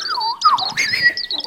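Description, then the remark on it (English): A robin chirps and warbles in a continuous run of thin, high whistling notes that slide up and down, clear, with no voices around it. “Robins, tough little bastards there.”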